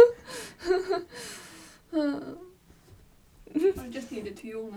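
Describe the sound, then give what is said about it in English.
A drawn-out, breathy yawn with a sighing voiced tail, broken up by gasping bursts of laughter before and after. “I just needed to yawn and then I laughed.”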